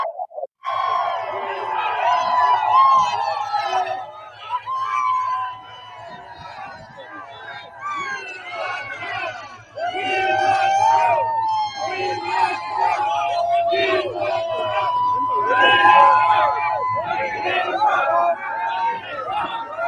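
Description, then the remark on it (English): A large rally crowd cheers and shouts continuously for about twenty seconds, a dense, loud roar of many voices with whoops and calls rising over a steady low hum. “But look at this crowd, guys. Look at this. There's a real crowd.”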